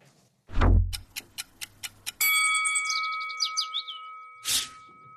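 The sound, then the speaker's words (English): A produced ticking-clock sound effect introducing a round of tweets: a deep thump, then six crisp, evenly spaced ticks, followed by a bright sustained chime with twittering flourishes and a closing whoosh. No voices. “When the clock goes up, there it is.”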